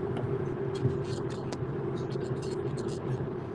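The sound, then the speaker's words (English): Steady low road rumble and engine drone from inside a car moving at highway speed on a Southern California highway, with faint broken bits of a voice over the constant hum. “thank you for taking the time to join us as you drive down the Southern California highway.”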